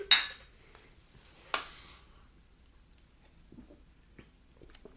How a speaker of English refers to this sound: so let's take the drink and we'll talk about this. Hold on. Cheers. Cheers.